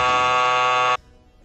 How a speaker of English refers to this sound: Don't just mention their names. You gotta beep it out now.